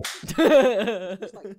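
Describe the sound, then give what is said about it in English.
A single sharp slap cracks out near the start, followed right away by a drawn-out vocal reaction, a strained, pitched cry with a few short trailing sounds. “At least slap him with the book.”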